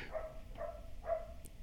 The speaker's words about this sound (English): Do you hear that dog? No. Oh, a crouton's going off about something.